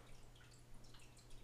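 A small tabletop Zen garden water fountain trickles quietly, with soft, irregular drips falling over a steady low hum, heard faintly and on its own with no one talking.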